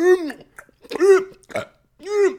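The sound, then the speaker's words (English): A voice imitates belching, three drawn-out burp sounds with short gaps between them, loud, the last one stretched longest. “Burping, belching, belly aching.”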